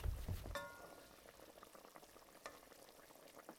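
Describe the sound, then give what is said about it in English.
A pot of potatoes bubbles at a steady boil on the stove, the continuous simmering broken by a brief metallic clank of the pot near the start. “All the cold stuff, potatoes just finished boiling, and the turkeys are in the oven.”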